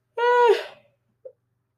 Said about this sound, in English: Oh no, I'm yawning.